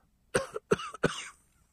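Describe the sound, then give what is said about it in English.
Three short, dry, tickly coughs in quick succession, fairly loud, the last trailing off slightly, with no talking around them. “Actually, the funny thing is, when you've got this sort of tickly cough, as anybody who's had it or got it will tell you, you can go so far, then all of a sudden it starts ticking.”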